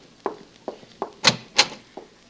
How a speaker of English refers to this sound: Oh. They're here. You open the door for them.